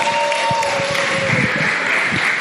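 Steady, dense applause from an audience at a storytelling event, a continuous wash of many hands clapping at a loud, even level with no voices standing out.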